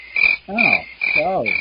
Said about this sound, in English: Crickets. Crickets. Crickets.